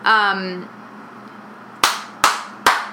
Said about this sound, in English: I just want you to see those four claps, so you know when to. That's why they slate. Okay. You're gonna see those four claps.